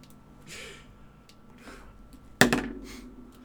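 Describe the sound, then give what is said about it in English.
After a few soft breaths, dice clatter onto a table in one sharp burst that rattles briefly and fades. Nobody speaks. “Are you gonna roll the fucking dice, or what are you doing?”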